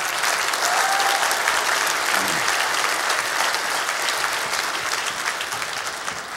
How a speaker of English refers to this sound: Give them all a hand clap.